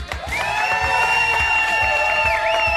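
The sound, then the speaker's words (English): A festive crowd at Fuddruckers Greenway 59 in Wesleyan cheers and whoops steadily at a live evening show, a loud wash of voices with several high, sustained shouts riding over the top and scattered claps underneath. “What a festive crowd we have tonight here at Fuddruckers Greenway 59 in Wesleyan.”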